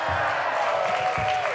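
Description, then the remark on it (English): An audience claps and cheers in a dense, steady burst of applause, with a sustained high whoop rising above the noise and dropping off at the end. “Okay, look, you guys, don't clap.”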